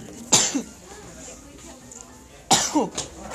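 Two sharp, explosive sneezes about two seconds apart, each a sudden loud burst with a brief breathy tail, with no talking around them.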